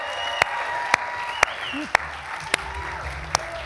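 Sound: audience applause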